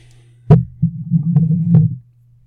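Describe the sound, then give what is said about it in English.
A chair creaks: a sharp knock, then a low, groaning creak lasting about a second and a half, broken by a couple of brief ticks, with no talking. “Oh, the chair is very squeaky. I need some WD-40.”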